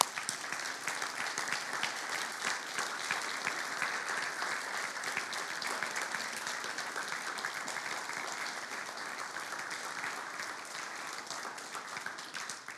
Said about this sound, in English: If you're a mom here this morning, will you stand? I know you guys hate this, but mom, stand up. We just want to honor you this morning. Yeah, we can clap.